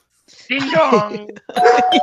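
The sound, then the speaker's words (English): A voice imitates a doorbell's ding-dong chime in two sing-song syllables, the first drawn out and the second shorter and higher, spoken up close and fairly loud. “Ding dong.”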